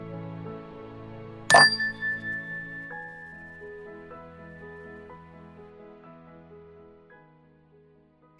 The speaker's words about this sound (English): You can place your hands gently in your lap and close your eyes, and we'll begin this meditation with a ring of the chime, and we'll end the meditation with the ring of the chime.